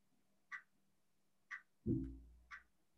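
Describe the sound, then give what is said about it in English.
A clock ticks steadily about once a second, each tick a short, crisp click, with one dull low thump in the middle and no voices. “It's a clicking, it's a ticking, talking, clocking.”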